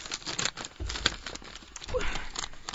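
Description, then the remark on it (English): Crisp crinkling and rustling of wrapping paper with pink and gold polka dots being torn and handled as a gift is unwrapped, a steady run of papery crackles with a brief sharp tear partway through. “It's wrapping paper.”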